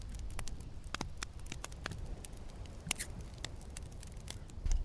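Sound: sipping water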